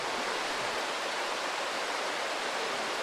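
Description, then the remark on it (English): Rushing water fills the space with a steady, dense hiss, an underground river flowing continuously through a cave, the same stream that runs on the surface, with no breaks or other sounds, fairly loud throughout. “It's the same river or same stream we saw on the surface for the first time when we went through the bridge.”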